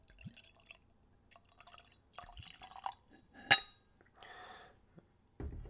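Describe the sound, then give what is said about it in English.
Midori liqueur is poured into a glass: scattered drips and soft glassy taps, one sharp clink midway, then a brief steady pour and a final thud. No one speaks. “So, I'm going to tell you how I plan to taste and describe the spirits, but first we'll pour a little.”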